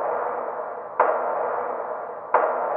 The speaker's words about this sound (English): What's that? It's a knock, you idiot. Why would anyone knock? Not like we can let anybody in.